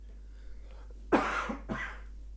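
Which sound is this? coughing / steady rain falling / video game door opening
coughing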